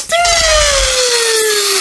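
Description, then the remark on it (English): A voice imitates a deflating rocket balloon with a loud, continuous high-pitched screech that slowly slides downward in pitch for almost two seconds. Low rumbly noise sits underneath. “Did you ever get those balloons when you were a kid that they were super long and they would make like a rocket type sound or something?”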